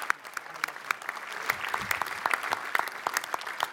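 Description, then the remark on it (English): An audience claps steadily, a dense patter of many hands with sharp individual claps poking through, sustained throughout without any voices; applauding the anniversary of British forces evacuating Boston. “We can applaud for that.”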